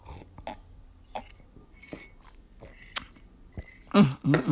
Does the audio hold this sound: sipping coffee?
yes